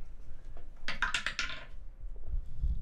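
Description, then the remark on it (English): A die clatters down a homemade stepped dice tower, a quick cluster of bright clicks and rattles lasting under a second, fairly loud, then settling into quiet. “we built it, and then inside of it there is Steps. this step, and then this step, and then no, and then there's a bottom step there. Put a dice in there.”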